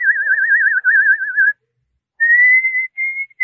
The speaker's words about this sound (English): You don't like the bird's song, sir? The bird? I thought it was my own mind. That's the song I've been hunting for. Who taught it to him?